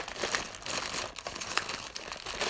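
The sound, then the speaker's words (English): Continuous crinkling and rustling of an already-opened envelope weighing about a pound as it is handled, with irregular crisp bursts throughout and no voices. “There you go, got some good rustling there.”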